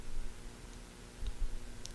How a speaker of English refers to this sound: I hear the hum of the air conditioner. It kind of has an oscillating, for me, oscillating sound. It doesn't quite disappear, but it's kind of, I feel the changing nature of that sound.